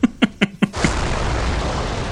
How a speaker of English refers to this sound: All right, so the movie opens with an explosion. It's great. Standard. It just immediately gets right to the point. It looks fantastic on Blu-ray, too. This explosion. Yeah, it was a good transfer. When the debris, like, rains down, trailing dust.